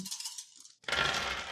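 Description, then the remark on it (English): Dice are rolled on a table for a leadership check in a game: a short clattering rattle of small hard objects tumbling across the surface, followed by a louder, dense burst of scattering clicks, without any speech. “I'm rolling a leadership check.”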